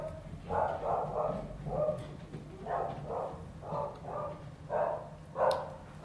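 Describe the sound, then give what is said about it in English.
A neighbour's dogs bark repeatedly, a steady series of short, yappy barks coming in uneven clusters over a low background hum, with no one speaking. “For those who don't speak Spanish dog language, that is my neighbour's dogs saying goodbye and thank you for listening.”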